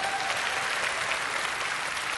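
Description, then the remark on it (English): An audience claps together as a clap offering to the Lord, in a dense, steady burst of applause, many hands blending into a continuous bright crackle that holds an even loudness throughout, with no voices standing out. “Everybody wants that anointing, give the Lord a clap offering.”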